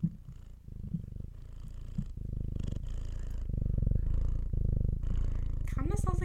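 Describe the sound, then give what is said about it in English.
A cat purrs steadily, a low rhythmic rumble with breathy in-and-out cycles, loud and continuous throughout with a faint higher sound near the end. “No, that's your cat.”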